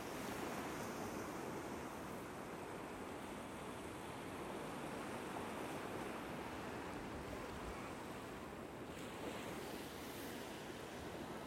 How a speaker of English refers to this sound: Soon you will reach the water's edge. The sea is not deep. The water laps over your feet and your ankles.